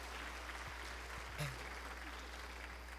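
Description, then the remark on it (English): An audience at the Skillman Church of Christ claps steadily for a few seconds for a group of children, a dense, even patter of many hands, with a brief voice rising above it midway. “But let's give a round of applause right now, kicking us off right.”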